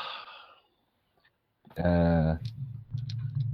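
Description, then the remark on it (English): A short rattle of dice at the start, then a pause before a voice sounds loudly and murmuring continues underneath. “I hear dice.”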